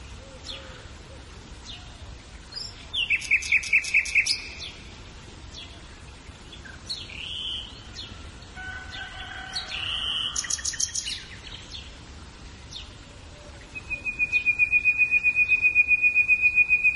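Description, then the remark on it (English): Birds chirp and sing outdoors in several bright bursts, rapid trills and sharp calls repeating over a steady background hiss, with a sustained high insect-like buzz near the end. “So Jesus just told us in his words to us that we are to ponder the birds. So we're going to do that here for a second.”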